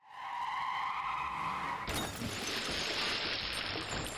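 A loud, sustained tire screech as the orange race car skids at Dead Bear's Curve during a road race, then an abrupt crash of smashing and splintering debris as it goes right through a fence, rattling for a couple of seconds. No voices.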